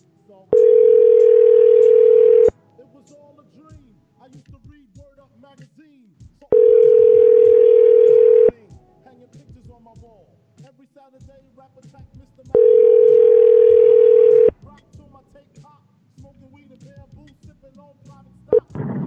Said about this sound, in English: Oh wait, it's ringing now.